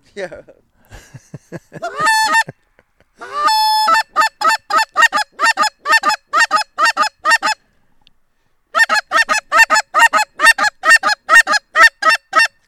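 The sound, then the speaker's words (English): A line of geese honks in flight, loud, with a steady rapid run of harsh calls that pauses briefly and then picks up again, with a few murmurs at the start. “There, line of geese right there.”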